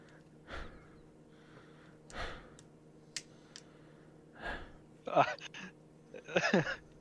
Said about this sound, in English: Cap's breathing slows.